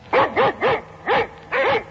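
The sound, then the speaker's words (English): A female dog barks in a quick, uneven series of about five or six sharp, loud barks, with no other sound around them. “May she rest in peace in that big doggy heaven in the sky.”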